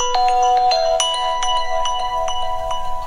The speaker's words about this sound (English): Oh, I'm terribly sorry. This is awfully embarrassing. That's my phone's just gone off. I'm actually learning Italian through this application on my phone.